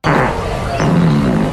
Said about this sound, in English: So I think if I had to lock in a favourite, I think number six did the best fart out of the contenders.